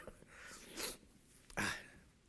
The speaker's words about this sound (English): I wish I'd just sneeze rather than not.